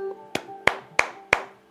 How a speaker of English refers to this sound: To play Clap It Back, all you need to do is clap back the rhythm of every phrase that I say. For example, if I say, skillet cornbread, you would clap...